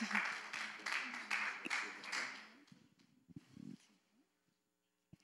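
A crowd applauds to welcome a speaker, with dense, steady clapping that swells in pulses for a couple of seconds, then thins out and trails off into near silence, with a few murmuring voices underneath.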